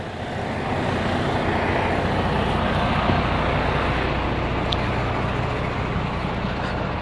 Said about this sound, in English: There's 9 18-wheeler trucks right here. I'm walking by. There's a factory, so I'm a... Well, damn, there's like 12 trucks.